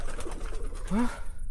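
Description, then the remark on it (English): A single low, rising bird coo sounds late at night, brief and clear against a quiet background with faint low rumble. “Damned bird! Scare me out of my wits. Especially this late at night.”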